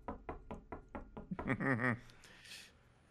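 About six steady, evenly spaced knocks on a door, followed by a brief warbling, wavering tone and a soft hiss as the sound fades.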